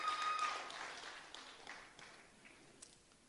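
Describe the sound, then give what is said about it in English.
A church audience claps their hands together for the Lord as they sit, a dense burst of applause that starts loud and gradually thins and fades over a few seconds, with scattered claps trailing off at the end. “Clap your hands together for the Lord as you sit.”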